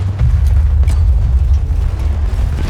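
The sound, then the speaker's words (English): A loud, deep rumbling blast from a grenade explosion, its heavy low roar sustained throughout with a few brief crackling bursts on top and no voices. “Grenade”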